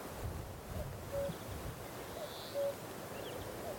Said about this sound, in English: Really good cuckoo.